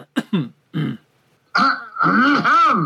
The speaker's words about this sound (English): You should get that cough checked, dear boy.